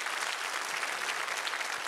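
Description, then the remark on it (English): An audience applauds the Lord after a Bible reading, a steady, dense wash of clapping that holds at an even level throughout, with no voices standing out. “Can you give the Lord applause for the reading of the word of the Lord today?”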